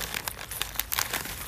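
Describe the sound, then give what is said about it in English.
Plastic apple candy wrappers crinkle and rustle as two packages are shuffled behind a person's back, a rapid series of crisp crackling bursts over about a second and a half, with no one speaking. “And I'm gonna put them behind my back. I'm gonna shuffle them.”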